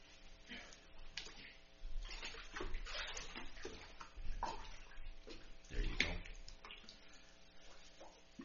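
Water sloshes and splashes in irregular bursts as someone wades into a church baptistry for a baptism, with a faint murmur of voices and room echo behind it.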